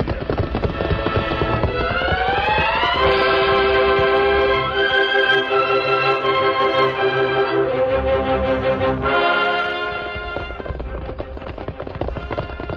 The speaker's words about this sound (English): Look, Tonto. Just beyond the rise. That's the westbound train. Left Laramie over 30 minutes ago.